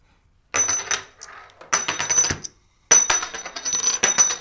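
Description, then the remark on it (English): Small hard game tokens clink and jingle against each other in three quick bursts as they are handed out to players, with short pauses between them, bright metallic rattling, fairly loud, no voices. “So, 2,000 bits here, and these are special because I'm going to give one of these to each of you.”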